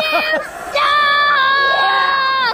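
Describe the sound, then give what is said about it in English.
Loud crowd voices yell a long, sustained shout, rising in pitch and holding steady for a couple of seconds after a brief opening burst, as an arena crowd jeers at a basketball game while the Wizards shoot free throws. “I didn't yell, you suck, during free throws a couple times”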